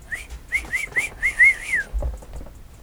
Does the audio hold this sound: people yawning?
no